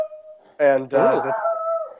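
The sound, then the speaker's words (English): A dog lets out a short, wavering howl, rising and bending in pitch over a couple of seconds, with a steady faint tone underneath. “My dog wants to say hello.”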